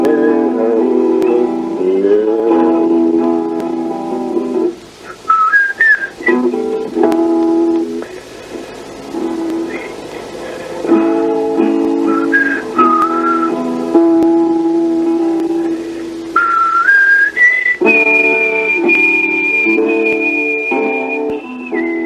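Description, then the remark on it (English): A rough demo recording of a song with a high, clear whistled melody gliding in and out above steady instrumental chords, the whistling growing longer and more sustained toward the end; no one speaks. “And I'm kind of interested in the whistling.”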